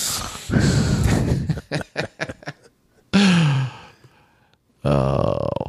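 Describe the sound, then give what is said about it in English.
Heavy breathing into a microphone, loud and breathy, with a run of quick puffing exhales, a grunting rasp, and a final hoarse breath, all with no talking. “hearing … breathing into the microphone is always a treat”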